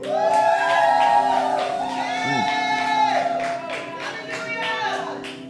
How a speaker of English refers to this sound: Take about 5 seconds wherever you are, and I want you to scream for Jesus as loud as you can. Here you go. 1, 2, 3, go.